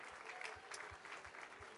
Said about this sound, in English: One more time, let's clap our hands all over the house as you make your way back to your seat.